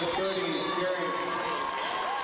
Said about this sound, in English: Woodland fans making some noise as the timeout is called by Coach Phil Brackman of Concordia.